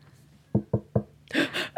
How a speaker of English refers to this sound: Then, one day there was a knock at the door.